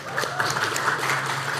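An audience bursts into steady applause for a volunteer who has come up on stage, a dense, even wash of many hands clapping at once with a few sharper claps standing out, holding at a constant moderate level without any talking.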